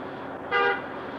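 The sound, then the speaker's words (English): A single short car horn toot as a departing driver beeps goodbye, a clear tonal beep lasting about a fifth of a second, rising above a steady background hum with no voices. “There goes Michelle. Just beeped goodbye.”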